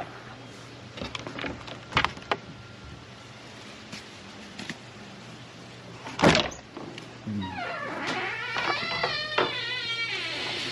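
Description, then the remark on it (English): An old, falling-apart shed door, held together with a bungee cord, rattles and thunks, with scattered knocks and clatter of someone rummaging for a shovel, then a long creaking, squealing hinge sound near the end. No talking. “My shed is old and it's falling apart and I need a bungee cord to hold the door together.”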